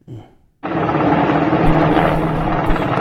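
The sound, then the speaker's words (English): A loud, steady Black Hawk helicopter roar starts abruptly after a brief muffled sound and a moment of silence, its churning rotor noise sustained to the end; the Taliban are flying it with a person hanging from it. “They are hanging people from a moving helicopter, presumably an American interpreter, from a Black Hawk helicopter.”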